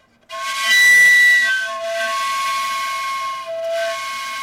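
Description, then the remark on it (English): A camotero's sweet potato steam cart on a Mexico City street at night, a steel drum baking sweet potatoes on embers that push hot air up a pipe, lets out one long, shrill steam whistle, a steady high-pitched tone laced with airy hiss that holds for about four seconds with a slight dip partway through. “There's the camotero who rolls a steel drum down the streets of the city at night, baking sweet potatoes on embers that push hot air up a pipe.”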